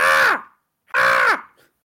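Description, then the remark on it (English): A person imitates a crow with two loud, harsh caws, each about half a second long, separated by a short silence. “Didn't like my crow impression.”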